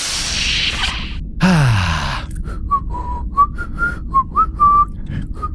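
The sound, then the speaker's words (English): Someone whistles a short tune, a string of clear, steady notes that step up and down in pitch, following a brief whooshing burst and a falling, sliding tone. “Yes, I have decided to start whistling. I've never heard you whistle before.”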